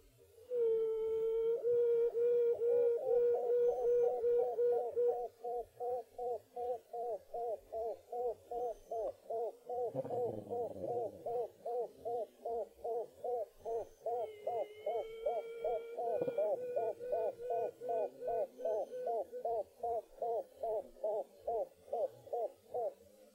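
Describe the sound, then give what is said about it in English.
A honeybee queen quacking: a long, steady run of short, croak-like pulses repeating rapidly at a low-mid pitch, loud and continuous throughout with no voices. “I have a recording of a quacking, so let me play that for you so you can hear what the difference is.”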